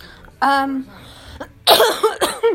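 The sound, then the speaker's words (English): A brief voiced sound, then a loud run of harsh coughs, three or so in quick succession, rough and breathy, ending the moment. “sorry guys, that was my cough.”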